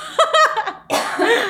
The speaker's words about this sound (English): Hold on, I'm about to have a coughing attack.